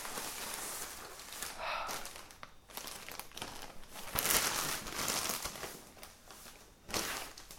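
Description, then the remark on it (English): Continuous crinkling and rustling of thin tissue paper wrapping a parcel of yarn, with irregular bursts of crisp crackles as it is handled and pulled open, fairly quiet overall with no talking. “It's wrapped in tissue paper.”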